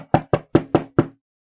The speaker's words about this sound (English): And he starts knocking on the door.